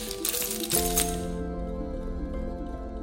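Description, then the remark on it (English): A brief, bright metallic jingle of keys being picked up for about a second, then it stops, leaving a steady low tonal hum underneath. “Let me get my keys.”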